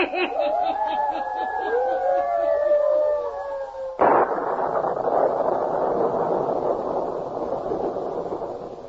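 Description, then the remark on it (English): Eerie wavering tones glide for about four seconds, then a sudden loud crack of thunder from a small electrical storm breaks in and rolls on as a steady, hissing roar until the end. “Matter of a small electrical storm should not trouble you,”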